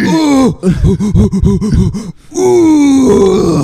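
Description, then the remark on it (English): A voice imitates a woman doing a manly grunt while straining on the toilet: a low groan, then a quick run of about eight rhythmic, pulsing grunts, ending in a long drawn-out strained moan, loud and without other speech. “Like, she was doing the manly grunt when she was shitting.”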